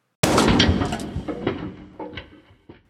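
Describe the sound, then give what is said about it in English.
A sudden loud crashing blast as a 45-pound bolt thrower, set as a trap behind a bedroom door, fires at 3 o'clock in the morning and blows the door into 100 pieces, followed by scattered clattering and rattling debris that gradually fades over a couple of seconds. “Jenna woke to the sound of the bolt thrower exploding her door into 100 pieces.”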